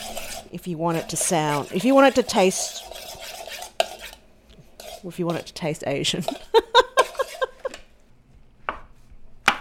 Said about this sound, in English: So I'm just chopping these fresh shiitakes.